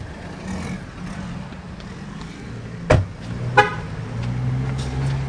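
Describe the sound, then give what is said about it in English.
Two short car horn chirps sound a moment apart as a car is locked with its keys at a highway convenience store food mart, over a steady low hum of traffic and engines. “I hate the honking of the car with the keys locked.”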